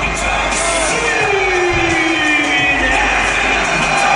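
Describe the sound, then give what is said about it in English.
A large New Orleans arena crowd cheers and roars in a loud, steady wash of voices that holds for several seconds, with a few higher shouts rising above the dense din. “The New Orleans crowd has cemented themselves as one of the best crowds in the history.”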